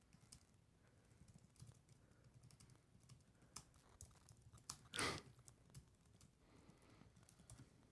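Steady, uneven clicking of fingers typing a tweet on a computer keyboard, fairly quiet, with one louder clattering burst partway through and no talking.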